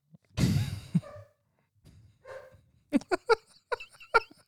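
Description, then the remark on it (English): Dogs whining and playing, with a dog named Revan trying to play with a female dog who keeps crying: a loud breathy huff, a brief whine, then a quick run of short, high yips and whimpers, with no talking. “I'm just trying to ignore the dogs.”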